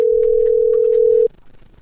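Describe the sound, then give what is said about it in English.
A loud, steady telephone dial tone hums at one constant pitch for just over a second, then cuts off abruptly, leaving faint line noise behind. “By the way, here goes the phone noise.”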